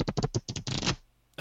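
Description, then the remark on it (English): A man passes wind: about a second of rapid, raspy bursts that run together, then fade into near silence. No one speaks. “that was him passing wind.”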